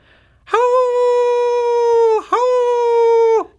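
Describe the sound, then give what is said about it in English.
A person imitates a coyote howl with a loud, sustained tone that swoops up, holds, then drops off, followed after a brief breath by a second, shorter howl. “Close. Coyote. Okay. Yeah. That's a good coyote.”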